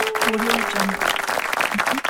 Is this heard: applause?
yes